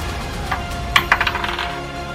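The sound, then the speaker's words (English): Dice rolled with advantage in a tabletop game clatter across a hard table surface, a sharp initial hit followed by a quick series of smaller bouncing clicks that settle and fade, fairly loud with no talking. “Do you want to roll advantage to see if you can actually nat this thing?”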